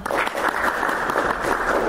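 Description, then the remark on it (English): An audience at a talk claps steadily in an audio poll, those wanting to get engaged in creating podcasts clapping, a dense patter of many hands blending into continuous applause at an even, fairly loud level for the whole stretch. “Those who are here because they'd like to get engaged in creating podcasts, clap.”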